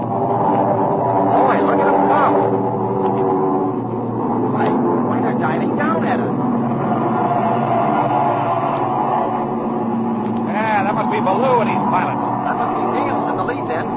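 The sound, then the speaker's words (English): A loud, steady drone of a formation of propeller warplanes overhead to the west, including a Focke-Wulf 190 and a Mustang, a thick layered engine hum that holds throughout, with voices talking over it now and then. “Hey, look over there to the west. A formation of planes.”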